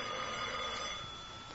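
A telephone bell rings continuously, a bright metallic jangle that holds steady and fairly loud for the whole moment, with no voices over it.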